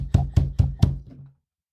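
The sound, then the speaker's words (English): Four firm, evenly spaced knocks on a door, heavy, with a deep wooden thud to each, then silence. “I'm on somebody at the door and shit.”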